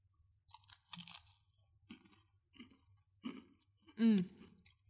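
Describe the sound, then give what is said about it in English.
A crisp crunch of someone biting into a cracker topped with Gruyere cheese, followed by several quieter chewing crunches at an uneven pace, then a short voiced murmur near the end. “So during the break, I put some Gruyere cheese on some crackers.”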